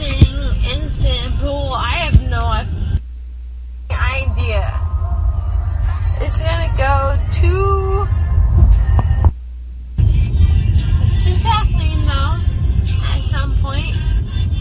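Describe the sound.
Loud music with a singing voice plays from a woman's car stereo inside her moving car over a heavy, throbbing bass and low engine rumble, briefly dropping twice to a quieter road hum.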